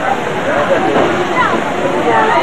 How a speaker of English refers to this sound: Yeah! It's a river!